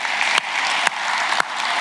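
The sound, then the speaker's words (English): Steady crowd applause for the Alpha team during a Sunday church gathering, a dense wash of many hands clapping continuously at an even level, with a few sharper individual claps standing out from the texture. “Can we give a round of applause to the Alpha team?”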